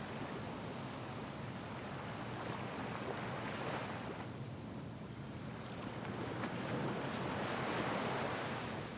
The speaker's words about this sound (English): Now it's time to just lie on the beach. Feel those ocean waves moving over our feet, sitting on the sand, watching the horizon, and feeling alive in our bodies.